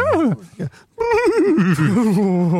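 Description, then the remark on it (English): A horse whinnies loudly: a short descending whinny, a brief pause, then a longer quavering call whose pitch wobbles and slowly falls. “They prick up their ears, they look up and whinny.”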